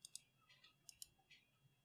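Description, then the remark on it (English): A washing machine running in the room above, heard as faint, sharp clicks that come in quick pairs with softer rattly ticks between them, over a low steady hum. No one speaks. “Is your washing machine running somewhere? Yeah, it sounds like a washing machine.”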